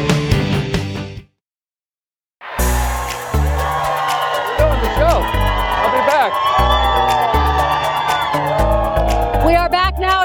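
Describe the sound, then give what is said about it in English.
A studio audience on a Wednesday morning, 28 December, cheers and whoops loudly over pounding, upbeat music, with high shouts rising above the noise after a brief moment of silence near the start. “Check out this crowd. You guys are amazing for being here.”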